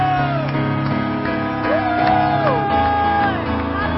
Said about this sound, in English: If you love the Lord, will you give Him a shout of praise and a hand clap of victory? Hallelujah!